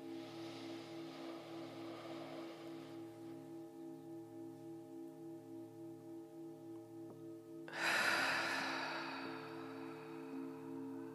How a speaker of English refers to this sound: And one more, one final breath like this.